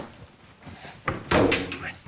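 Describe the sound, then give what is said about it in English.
A soft thump followed by a loud slap as a slice of peanut-buttered bread is slammed against a window, with a brief muffled rustle afterward. “Slams that peanut buttered bread on the window.”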